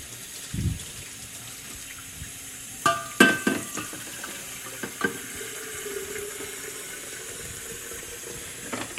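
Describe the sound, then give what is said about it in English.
Water runs steadily from a faucet into a kettle being filled to make tea, a continuous hiss and splash broken by a few clanking knocks of metal partway through. No one speaks. “Go to your faucet and fill your kettle with some water.”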